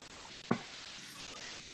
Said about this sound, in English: Who got the static on their mic? What's that?